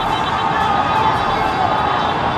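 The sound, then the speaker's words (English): A massive city crowd in Toronto cheering the moment after the Raptors clinched their first NBA championship, heard from high up in an apartment or condo complex as a steady, dense roar that blends into one continuous wash of sound with no individual voices standing out. “This is the moment after the Raptors clinched their first ever NBA championship, the first for Canada. And this is the sound from that high up.”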